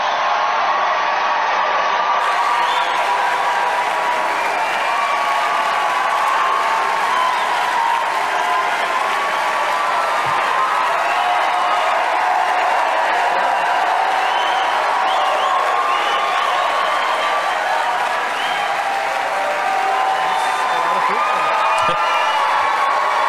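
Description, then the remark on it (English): Sustained crowd applause and cheering fills the whole span, a dense, steady roar of clapping with whoops rising above it, loud and unbroken with no speech over it. The crowd is reacting to a speaker asking whether they would like him to run for president. “This applause is longer than Biden being able to talk.”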